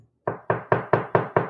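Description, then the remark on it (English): Six quick, evenly spaced knocks on a door in a hotel room, acted out, fairly loud, following a brief moment of quiet. No one speaks. “She wasn't in bed, and I knock on the door, and she doesn't answer.”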